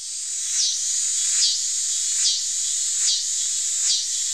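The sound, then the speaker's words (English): A cicada's loud, steady high-pitched buzzing song, made by ribs in its timbal buckling one after another to give many clicks, swelling in rhythmic pulses about every second, with no other sounds or voices. “Every time a rib buckles, it produces a click, and many clicks produce a buzz.”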